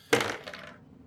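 A quick clatter of two dice tumbling across a hard tabletop, a sharp burst of clicks followed by a few softer rattles as they settle, with no voices; a roll for bluff in a game, landing on a 5 and a 6.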